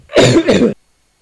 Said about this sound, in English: Are you with me? Can I cough?